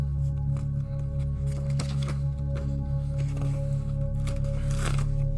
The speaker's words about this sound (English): I guess I don't have another piece of paper. Tyler, would you mind ripping me off a slice there?